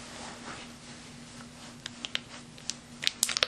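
A small plastic soy sauce packet is crinkled and torn open, with scattered sharp crackles that bunch together near the end over a faint steady hum.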